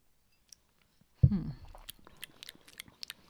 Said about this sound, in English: Let me try. I'm going to try another sip.